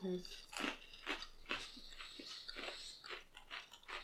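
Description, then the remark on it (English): Crisp crunching and chewing of an Oreo cookie, with repeated bites breaking apart in a steady rhythm of sharp, bright crackles for several seconds, no talking over it. “Real nice crunch, though.”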